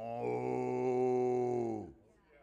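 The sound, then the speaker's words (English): A person imitates a cow, letting out one long, loud, drawn-out moo that holds steady for nearly two seconds before sagging and trailing off into quiet. “But what's the sound of them cattle lowing out?”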